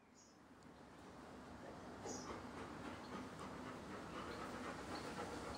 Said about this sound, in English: That's the panting of a dog. It's too hot, Bevakin. Good girl.